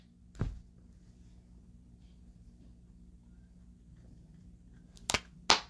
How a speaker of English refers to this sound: If you can hear me clap once.